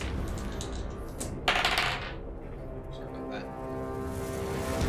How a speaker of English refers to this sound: Do we start using wild dice? Yes, always use your wild dice. That's the one that looks different than everything else. So I'd roll my special die and then regular one. Right, exactly.